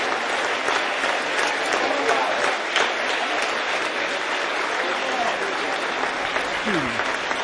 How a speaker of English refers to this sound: Come on. Come on, guys. Come on. Let's celebrate with these guys. Let's give the Lord Jesus Christ a round of applause.